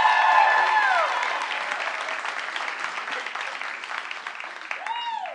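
An audience breaks into sustained applause, a dense wash of many hands clapping at steady volume for several seconds, with a few whoops and cheers rising over it.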